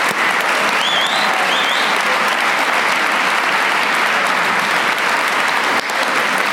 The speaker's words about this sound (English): We're so grateful for you guys. Give that team that put all this together a round of applause for me.